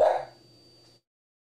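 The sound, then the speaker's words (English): A single short, sharp dog bark, fading quickly into a faint low rumble with no voices around it. “My dog is looking for your dog, and your dog is barking.”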